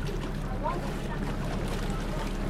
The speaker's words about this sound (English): The boat from Picton pulls up at Motuara Island.